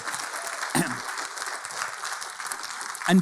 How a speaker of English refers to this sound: Let's just give a round of applause to God. Let's just thank him for who he is.